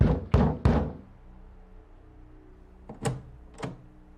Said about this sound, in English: Until one morning when the sunrise brought a knock on the door. I'm coming.